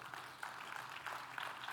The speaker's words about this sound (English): Yeah, go ahead and clap for that.